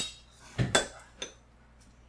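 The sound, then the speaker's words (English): A metal spoon clinks and taps against something hard a few times as it is handed over to eat with: a louder pair of clinks, then softer scattered ones, with no talking. “Do you have a spoon anywhere I can eat with? Right there. Andy can hand you one.”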